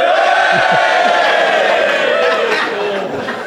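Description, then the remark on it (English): A crowd cheers and whoops loudly in a sustained roar of many voices, voting by cheering that the speaker acted immorally, holding steady for a few seconds before tapering off slightly at the end. “If you think I acted immorally, cheer now.”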